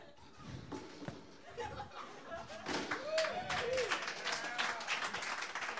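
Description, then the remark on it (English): Scattered claps swell into steady crowd applause at a comedy show, growing louder through the second half, mixed with laughter and a few voices chattering underneath. “Stop clapping.”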